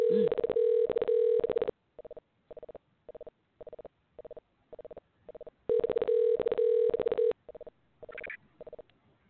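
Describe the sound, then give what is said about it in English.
An odd telephone ringback tone while placing a call, which then disconnects: a steady, buzzing tone in long stretches alternating with runs of short, evenly spaced beeps, clear with no voices. “That was a weird ring. Oh, it disconnected. So, yeah, that was a really weird sounding ring.”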